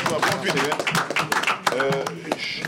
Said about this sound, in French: Ils ont travaillé d'arrache-pied pour faire de ce concert ce qu'il sera demain. Applaudissez, messieurs, pour moi.